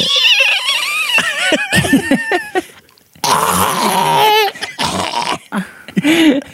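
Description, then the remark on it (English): A voice imitates a creature's screech: strained, throaty high-pitched wails with wavering pitch, in several bursts broken by a short pause, loud and raspy throughout. “At this point, the creature began to scream by releasing an awful high-pitched screech.”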